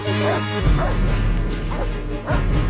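The celebrity dog Beethoven barks several times in short bursts over loud, dramatic orchestral music, the barks cutting through the sustained low tones and swelling score.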